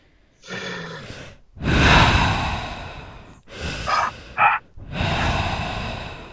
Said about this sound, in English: Should we start with some breathing exercises? That's what people like, is heavy breathing into the microphone, right?